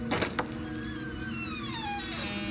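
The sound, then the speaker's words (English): A house's front door creaks slowly open: two quick latch clicks, then a long, drawn-out squeaky groan that slides downward in pitch. Fairly quiet, with no voices. “The door slowly opened to reveal an emaciated man with hollow eyes and a long, gaunt face.”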